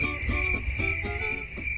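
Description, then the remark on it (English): Crickets chirp in a steady, unbroken high trill for a couple of seconds, fairly loud, with a soft low rumble underneath and no one talking. “Crickets from Haley's side of the table.”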